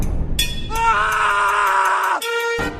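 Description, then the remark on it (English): A loud, drawn-out high-pitched scream, strained and tonal, played as a short produced jingle introducing a segment, with a noisy burst at the start and a brief break before it ends. “So the scream means only one thing, everybody.”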